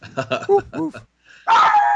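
A small dog yaps in a quick run of high, sharp barks, pauses briefly, then lets out a louder, drawn-out whiny bark.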